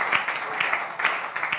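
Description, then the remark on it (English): An audience claps their hands for the Lord with dense, steady clapping that fills the whole stretch, many hands overlapping into a bright, crackling wash with no voices standing out. “Will you clap your hands for the Lord?”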